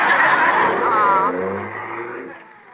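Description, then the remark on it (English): A car engine revs up with a rough, roaring drone, then its pitch shifts and the sound gradually fades as the car pulls away, driving to the county seat. “Well, then move over so I can get my foot on the accelerator.”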